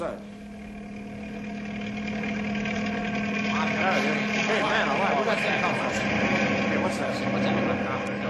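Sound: helicopter approaching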